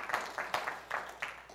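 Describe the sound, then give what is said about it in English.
A church audience in the auditorium at the River gives a clap of offering on Pentecost Sunday, clapping together in a steady, rhythmic beat, the many hands blending into a dense wash of applause that swells with each pulse. “One more big clap of offering.”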